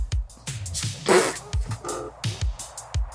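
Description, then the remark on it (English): A cat landing, not on her feet, with dull, heavy thuds, several low bumps scattered across a few seconds along with scuffling and rustling, with no voices. “Cat totally did not land on her feet if you heard the thud.”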